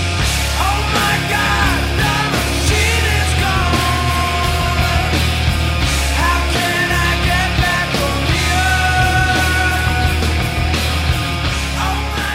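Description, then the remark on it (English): A loud, dense rock song recorded in 1990 plays throughout, a singer singing the male lead vocal over driving drums, heavy bass and distorted guitars, steady and full from start to finish. “Nevertheless, he did work up the courage to sing lead on a song that appeared halfway through the record.”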